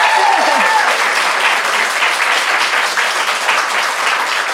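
A crowd applauds an author and her book, Be Seen, with dense, steady clapping that holds loud and even for nearly five seconds, with a brief cheer or voice audible near the start.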